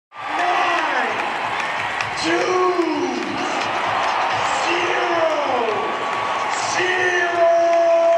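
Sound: stadium crowd cheering wildly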